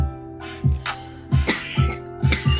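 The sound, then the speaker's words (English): A run of about five or six hoarse coughs in quick succession, each a short chesty burst, with no talking in between. “I told y'all, if I start just coughing, I ain't gonna be doing no podcast.”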